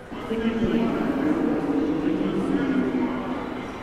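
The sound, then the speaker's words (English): A muffled, echoing public address announcement plays over a railway station served by the Amtrak Crescent long-distance passenger train, the voice steady and hard to make out beneath a low hum of ambient platform noise. “As you can hear, the station announcements are about of the same quality as in most railway stations I've encountered across the world.”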